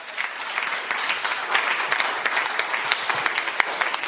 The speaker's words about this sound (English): Can you clap a little? Yes.